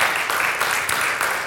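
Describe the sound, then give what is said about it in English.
A church crowd applauds the small group leaders with dense, steady clapping that fills the whole moment, a bright continuous patter with no pauses and no voices on top. “And so, can we just say thank you by a round of applause just for the small group leaders?”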